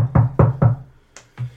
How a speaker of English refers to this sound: Oh, is that a knock on the door?